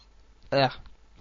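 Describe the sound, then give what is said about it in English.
A single short, loud burp, a low throaty voiced blast lasting a fraction of a second, surrounded by quiet, made as the show Turbo Drive Live signs off. “Laters, as I burp.”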